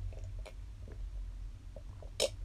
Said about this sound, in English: Hold on, I'm going to take some water.